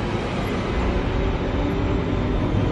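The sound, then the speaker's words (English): A train rumbles steadily along the rails, a continuous, loud roar heavy in the low end, with no pauses or distinct clacks standing out and no voices. “In sheer horror, oblivious to the noise of the train, and the chatter of the passengers fading into total silence.”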